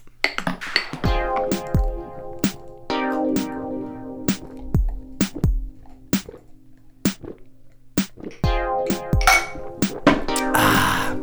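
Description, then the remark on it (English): Shot glasses, including a Texas Chainsaw Massacre shot glass from the Texas Chainsaw Massacre house in Texas, clink together again and again in a St. Patrick's Day toast, sharp bright taps with a short ringing tone, some in quick pairs and others spaced out, fairly loud with no talking. “you need to give me one of those shot glasses”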